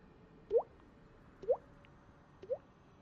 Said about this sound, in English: And as you start walking deeper into the cave, it gets quiet. And you can kind of hear, like, water just kind of dripping here and there.